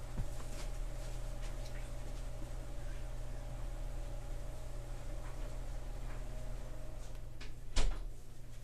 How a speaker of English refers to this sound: Back. I just had to close the door because it was gonna make it too loud.